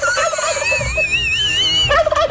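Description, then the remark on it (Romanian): A turkey gobbles loudly, a rapid warbling burst that repeats in quick succession with wavering high tones, heard on its own without any talking. “Li s-au promis curcani, mă.”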